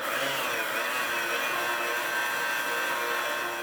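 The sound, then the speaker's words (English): A blender whirs steadily at high speed, blending fresh orange juice, confectioner's sugar, fresh mint leaves and freshly grated lime zest for a mimosa mixture, a loud, continuous motorized grinding and buzzing that holds for a few seconds with no talking. “After all those ingredients are in the blender, blend.”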